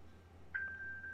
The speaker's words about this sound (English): I'm dinging my iPad. There you go. Now, how do I stop it? It's playing continuously. I guess I got to go to the iPad and open it up, and then it'll stop.